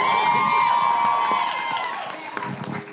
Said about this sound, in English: Can we clap it up louder